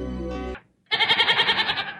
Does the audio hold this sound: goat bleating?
yes